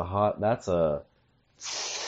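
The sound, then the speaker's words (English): A short burst of harsh, steady hissing from a flaming pan, lasting about half a second. It follows a brief run of voiced, wordless vocal sounds and a pause. “That's a flaming pan, dude, right there.”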